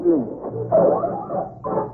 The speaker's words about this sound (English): Wolves! Wolves! And they're closing in.